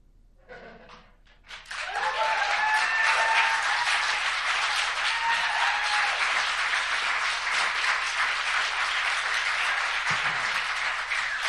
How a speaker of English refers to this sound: A big round of applause for our stage fright actors.